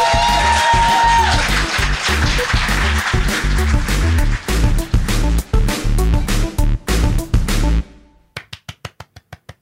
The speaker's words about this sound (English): I'm clapping. My God, you really enjoyed that episode.